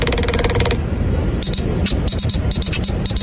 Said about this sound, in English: But listen to the ringtone though. It sounds pretty old school.